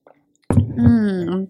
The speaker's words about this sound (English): I need to have a glass of, or a sip of my water. Why do I keep calling my vodka soda water?